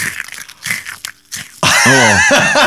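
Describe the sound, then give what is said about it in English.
Crunching of small hard Malteser chocolates being bitten, several brittle crunches in quick succession, then a loud, wavering vocal sound takes over. “You forget how crunchy they are, aren't they?”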